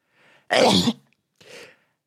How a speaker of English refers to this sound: Hadouken! That really hurt my fucking throat saying Hadouken while I was sneezing.